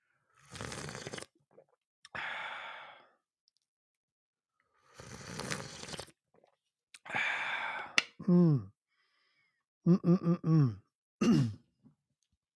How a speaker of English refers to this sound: If you have your coffee mugs, your travel mugs, your sippy cups, your doggy bowls, if you have a beer hat and you want to drink it like that, then go ahead and do so and join me in this sip of Cafecito.